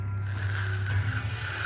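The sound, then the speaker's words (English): Paper tears in one steady, raspy rip lasting under two seconds, over a constant low hum, with no one speaking. “sound of paper tearing.”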